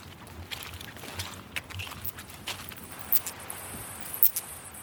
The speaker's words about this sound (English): This audible clicking you can hear is the sound of the acoustic lure which is set up at this harp trap, but if we slow it down by 10 times, this is what it sounds like.